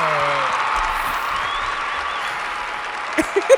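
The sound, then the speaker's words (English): An applause sound effect: steady, dense applause from a crowd fills the whole stretch, with a few cheering voices rising faintly within it and some louder individual claps near the end. “Run that clap back.”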